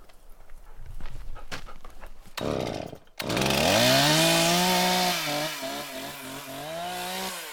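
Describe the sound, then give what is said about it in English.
A few scattered knocks and thumps, then a chainsaw roars to life, revving high and holding a loud, steady whine that bogs and pulses as it bites into wood. “I went back to the woods. And I went back as a sawyer.”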